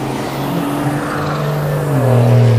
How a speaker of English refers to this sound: There's some loud cars driving by.